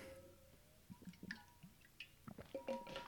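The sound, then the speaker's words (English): Quiet wet swallowing sounds of a big gulp of water: a few soft gulps and small liquid clicks spread over a few seconds, with no talking. “Big gulp of water there.”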